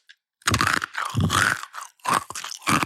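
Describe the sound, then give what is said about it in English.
Loud, dry crunching as a person chews a couple of firm Wild Earth kibble pieces, several gritty bursts in quick succession with short pauses between bites, heard alone without talk. “Now I'm going to get to try some as well.”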